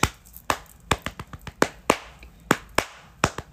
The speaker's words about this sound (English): is that applause? That was beautiful.